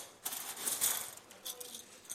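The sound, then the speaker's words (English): Metallic coins jingling and clinking together, with bright, sharp chinks as they drop and settle over a couple of seconds, moderately quiet. “Coins.”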